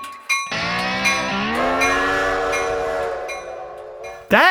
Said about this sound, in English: The sound of the train whistle blowing, well, like that specific, every time I hear that specific sound reminds me of